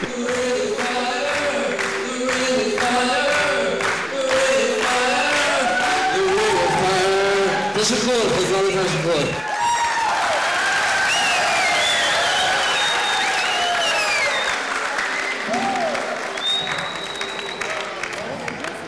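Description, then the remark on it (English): A large concert crowd cheers and applauds loudly and continuously, dense clapping blended with shouts and whistles, with a bright singing or shouted voice rising above the roar partway through. “But they are going crazy. It was the best crowd I've ever had.”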